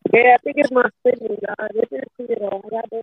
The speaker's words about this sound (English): It's choppy though. Damn it. Yeah, it's the signal. I'm over here in the boondocks.